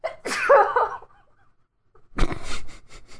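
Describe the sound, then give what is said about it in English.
A loud sneeze: a breathy, voiced build-up, a brief pause, then a sharp explosive burst that trails off into a short rough exhale. No talking. “I'm going to sneeze.”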